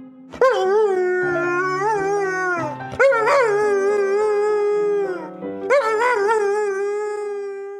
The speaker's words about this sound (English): What if that dog is just singing along? It could be just actually, like, feeling the melody.